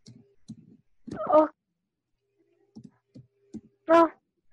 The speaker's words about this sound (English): I'm typing now. Okay. Can you see my message?